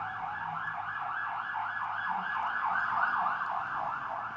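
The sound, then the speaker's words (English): A police car siren wails continuously, its rising and falling tone cycling rapidly and steadily at moderate volume from outside, with faint road rumble underneath and no voices. “There's a surprising amount of police cars out these days.”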